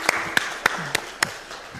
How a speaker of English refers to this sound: A round of applause for everybody. That. Well done.